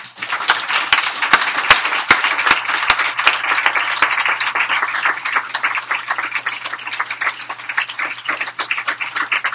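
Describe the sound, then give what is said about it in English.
Sustained audience applause for the participants in the Poem of the Year contest, a dense wash of many hands clapping steadily with a few sharper individual claps standing out early on, holding fairly loud throughout with no talking. “One more big round of applause for all of our participants in the Poem of the Year contest.”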